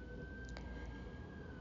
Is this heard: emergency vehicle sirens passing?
yes